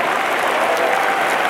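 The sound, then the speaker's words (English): An audience at a religious service claps steadily to give God praise, a dense, continuous wash of many hands applauding together at a lively volume, with no voices standing out. “Let's clap our hands and give God the praise.”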